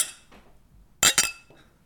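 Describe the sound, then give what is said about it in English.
Two bright, ringing clinks close together near the middle, loud, as men toast with IPA beer on the 4th of July, with a faint softer tap before and after and no talking over them. “Toast America with us. 4th of July. Cheers, gentlemen.”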